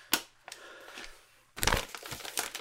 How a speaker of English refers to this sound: Can you stop with the paper rattling?